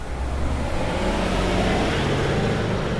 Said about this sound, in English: Of course, the bus had to follow me. I'm gonna find a quieter street.